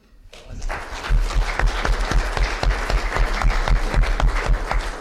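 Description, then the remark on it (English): A crowd of people breaks into sustained applause after a talk, dense overlapping claps swelling quickly and holding steady, loud, with no talking over it. “I don't think I deserve those plaudits”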